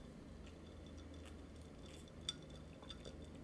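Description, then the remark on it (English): Ice clinks softly against a drinking glass a few times, with one sharper tap standing out midway, all quiet over a low, steady background hum and no talking. “I shouldn't have put ice in this.”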